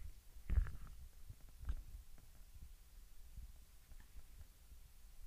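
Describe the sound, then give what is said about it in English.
A person's stomach growls and gurgles: low, muffled rumbling, as if heard through a body, with a louder burst early on and a softer one shortly after, then faint irregular bubbling under a quiet background hum. “No, guys, it's growling a lot.”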